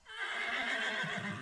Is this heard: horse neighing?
yes